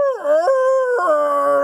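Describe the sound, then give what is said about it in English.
A person lets out a loud, sustained dog-like howl, imitating a dog with a wavering pitch that dips and rises in steps across the short cry, with no talking. “Mortimer lifted his head and howled like a dog”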